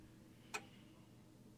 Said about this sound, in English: We had never owned a clock that ticked so loudly, so obtrusively. "It'll wake me up at night," he said. "It ticks so loudly."